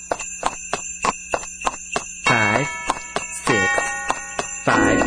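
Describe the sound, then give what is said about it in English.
Steady, evenly spaced horse hoof clops trot along in a crisp rhythm, joined by bright ringing bell tones that swell in and out between the beats. No one speaks. “Okay, cue the clops.”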